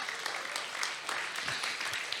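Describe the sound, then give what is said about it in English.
An audience claps steadily for a couple of seconds during a church sermon, a dense, even patter of many hands with no voices standing out and no break in the sound. “You ought to clap right there.”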